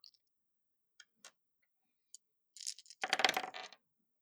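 A few scattered light clicks, then a short burst of hard, rattling clatter as dice tumble and settle on a tabletop, fairly loud, with no one speaking.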